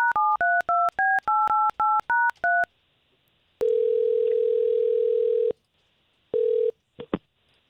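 A rapid run of about ten touch-tone keypad beeps as a radio station, K92.3, dials a woman's phone number, each a short two-pitch chirp, followed by a pause, a long steady low ringback tone, and the start of a second ring.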